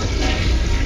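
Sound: toilet flushing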